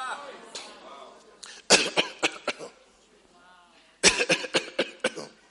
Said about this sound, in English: That cough. Dry.